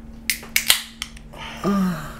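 Several sharp metallic clicks and a crisp snap as a beer bottle cap is worked off, followed by a steady pour of beer into a custom-made glass with a gurgling tone that rises in pitch as the glass fills.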